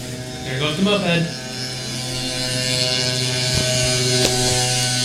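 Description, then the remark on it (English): A moped engine buzzes, its whiny pitch climbing in the first second before settling into a steady, fairly loud drone that holds to the end. “There goes the moped.”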